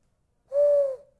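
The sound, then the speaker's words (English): A single sustained hoot, a person's voice mimicking an owl: one steady, clear tone held for about half a second, fairly loud, with silence before and after. “I can make a really good owl noise.”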